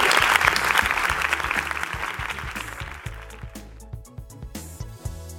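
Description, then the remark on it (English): A church audience applauds, giving God a big hand clap at the end of a sermon, with dense, loud clapping that gradually thins and fades, while a low rhythmic bass pulse from music continues underneath. “Give God a big hand clap.”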